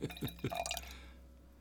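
Ruby red wine being poured into a glass: three quick low glugs, then a brighter, rising trickle that rings faintly before fading out, with no talking.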